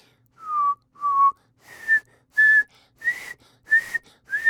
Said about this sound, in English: Okay, so now that the lesson's over, as we all know, this is the part of the podcast where I practice my whistling into the mic.